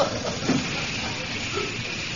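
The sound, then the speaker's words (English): A steam train stands idle, letting out a steady, continuous hiss of escaping steam at moderate volume, with a faint low rumble beneath and no clear voices. “Doesn't look much like a royal train, does it?”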